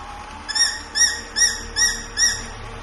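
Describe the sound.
A voice imitates a small cat with five short, high-pitched mewing calls, evenly spaced about half a second apart, each rising and then dipping in pitch, with no talking.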